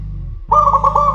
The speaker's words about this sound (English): I can't sing, so let the bird do the singing for me, for me.